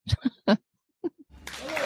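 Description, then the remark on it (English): A few short laughing, whooping voices, then a brief pause, then light applause from a small group that starts quietly and swells into a steady patter of clapping. “Hold on, that's still clapping.”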